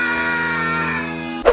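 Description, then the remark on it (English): A loud, drawn-out scream, the Howie scream stock movie sound effect, holding one strained pitch that sags slightly before breaking off in a brief harsh burst at the end. No one speaks. “Enjoy your Nutrigrain nostalgia with a Howie scream.”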